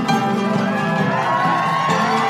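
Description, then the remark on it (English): An audience at the Sparks, Nevada, Marshal on Mars I'm From Earth Day special claps and cheers, a dense, steady wash of applause with whoops and shouts mixed in, loud and sustained throughout without letting up. “Sure, y'all can clap.”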